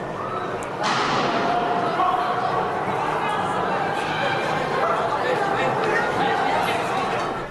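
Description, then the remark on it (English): A sudden loud gunshot cracks out early, followed by a few scattered sharper bangs over a steady, dense murmur of many voices echoing inside Lakewood Church during a service. “As soon as you hear those gunshots, guys, in that video, you see people sort of start to run and flee”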